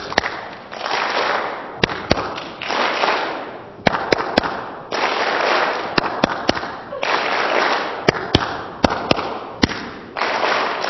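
Sharp hand claps in a clapping pattern from the show Stomp come in short rhythmic bursts of two to five, each group separated by a pause, over a steady wash of background noise and faint murmuring.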